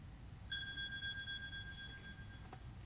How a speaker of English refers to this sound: There's a fire alarm. Do we need to evacuate,